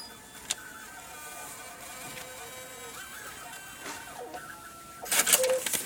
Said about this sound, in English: Like, printers always, to me, sound really musical. Yeah. I recorded a printer at, like, a wedding registry at Target. Okay. I've never heard one that sounded so musical.